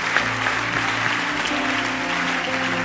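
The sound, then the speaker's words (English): A crowd claps steadily and continuously for about three seconds, a dense, even patter of many hands with sustained low musical tones humming underneath. “Keep clapping by mercy.”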